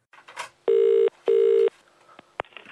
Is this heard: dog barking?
no